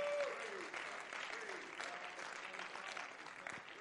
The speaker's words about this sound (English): In Jesus' name, would you clap your hands to the Lord in praise? Hallelujah.